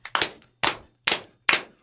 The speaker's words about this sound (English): Are you going to give him the slow clap, too? We're not aligned in the slow clap.